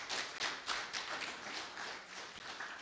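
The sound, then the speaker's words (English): A church audience applauds, giving God thanks for someone's continued healing, many hands clapping in a dense, steady patter that holds evenly for the whole stretch, fairly soft, with no voices over it. “We're applauding and giving God thanks for healing, continued healing in your life.”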